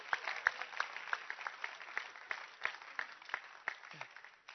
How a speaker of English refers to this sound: Oh, clap your hands for Bishop Dagiwad Mills.